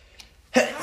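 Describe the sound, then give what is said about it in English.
A single loud sneeze bursts out after a brief quiet breath, its noisy blast holding strong to the end of the short moment. No one speaks. “You made me sneeze.”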